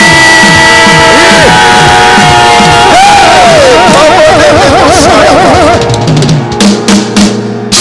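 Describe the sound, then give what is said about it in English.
A loud audience erupts in screaming, whooping and cheering in praise of God one morning, many voices overlapping in a dense, sustained roar that tapers into scattered shouts near the end. “Somebody scream.”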